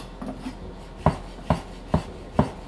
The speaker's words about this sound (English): So yeah, probably it's about a 1/2-inch dice that I'm chopping here.